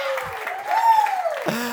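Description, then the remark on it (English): A crowd at a public worship service claps steadily for the kids as they come back down the aisle, while a voice lets out a long rising and falling whoop, with scattered cheers over the dense, continuous applause. “I don't think we can cheer for our kids enough.”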